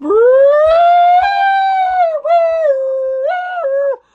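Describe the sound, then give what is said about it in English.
A person imitates an alarm siren with their voice: a loud, sustained wail that climbs in pitch, holds with slight wavering, briefly dips twice, then cuts off after about four seconds. “And because we have no sound effects on this program whatsoever, I do the sound effects. So please sound the alarm.”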